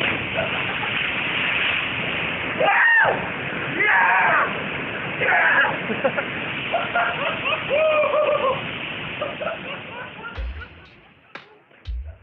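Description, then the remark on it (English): A waterfall roars steadily and loudly throughout as people canyoneering in a slot canyon jump off it into a pool below. Excited shouts and whoops rise over the rushing water before the noise thins out near the end. “rappelling and jumping down some pretty incredible waterfalls into a hidden slot canyon”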